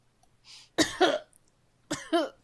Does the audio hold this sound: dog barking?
no